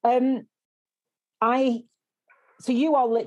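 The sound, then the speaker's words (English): A dog barks excitedly, three loud, drawn-out yelping barks separated by short pauses, the last one longer and more frantic. “My dog is going absolutely mental.”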